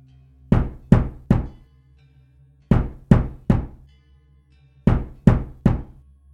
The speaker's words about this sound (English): As I was attempting to understand this email, I was interrupted by three loud knocks at my door.